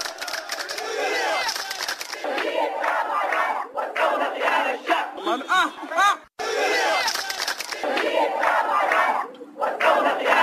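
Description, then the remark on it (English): A loud, chaotic crowd of protesters shouts and chants continuously on the streets of Khartoum during running battles with uniformed and ununiformed police. Sharp yells and rising cries break through the dense roar, broken by a brief sudden gap before the din resumes. “Earlier on Tuesday, uniformed and ununiformed policemen were locked in running battles with the demonstrators on the streets of Khartoum.”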